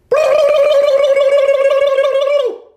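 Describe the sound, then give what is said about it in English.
A person imitates a turkey gobble: a loud, fluttering, gargly warble held on a steady mid pitch for over two seconds, then dropping off at the end. “Can we do a turkey noise real quick?”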